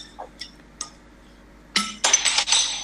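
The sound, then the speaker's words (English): A few light, bright clinks of a Sierra Nevada Pale Ale beer bottle tapping against a glass, then a louder burst of glassy clattering and handling noise, with no one speaking. “Right, this week I've managed to get my dirty little mitts on a Sierra Nevada Pale Ale, one of the bottles I managed to bring back from Britain when I went.”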